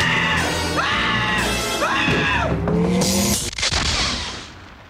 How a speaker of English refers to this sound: And he has the best fucking Homer scream of all the Homer screams in the history of The Simpsons. It's impressive. I fucking love it.